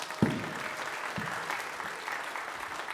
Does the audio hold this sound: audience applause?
yes